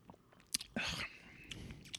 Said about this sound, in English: Let me see if I can do it again. One more little sip here.